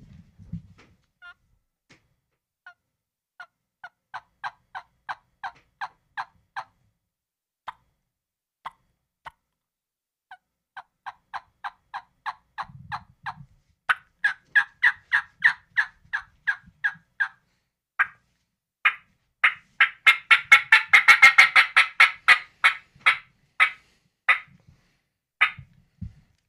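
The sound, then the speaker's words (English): A turkey call imitates a hen's fly-down cackle: a long series of sharp, nasal yelps that start sparse and slow, then speed up into a loud, excited cackle before tapering off, with no talking. “Give him a fly down, son.”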